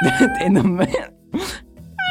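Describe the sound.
A person mimics a cat with a few drawn-out, wavering meows, fairly loud, followed by a short pause and then another brief meow-like cry.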